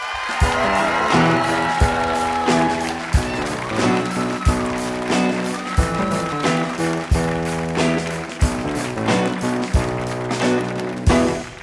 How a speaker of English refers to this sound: That was the coolest intro music I'll ever have in my entire life. That was pretty good. That's a … band, everybody.